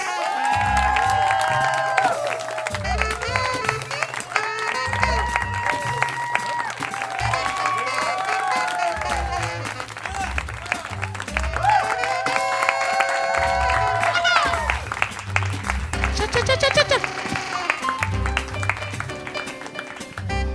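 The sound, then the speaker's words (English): A crowd at Dynasty Typewriter claps and cheers steadily for about twenty seconds for the cast of the show Alchemy This, the applause dense and sustained, with whoops and shouts rising above it and some talking mixed in. “If you would please keep that applause rolling for the cast of Alchemy This.”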